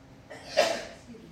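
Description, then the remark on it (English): A single sneeze, a short breathy burst that swells quickly and fades within about half a second, moderately loud against a quiet background with no talking. “Bless you.”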